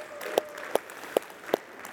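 Sparse clapping from a Baptist audience applauding the baptism of 18 people in one day: four sharp, evenly spaced claps about half a second apart, moderately loud over a low background hiss, with no talking.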